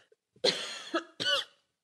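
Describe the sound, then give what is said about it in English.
A person coughs twice in quick succession, a longer rough burst followed by a shorter one, fairly loud with no talking. “Whoops, sorry for the cough.”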